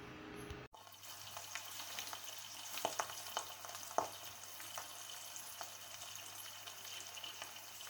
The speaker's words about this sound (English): The hot plate is already on maximum and we can enjoy the sound of the frying egg in the morning is the best.